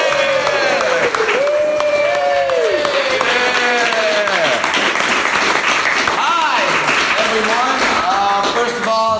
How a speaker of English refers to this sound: How about we do a little sitcom trick, and we start off with you guys doing a big round of applause right now.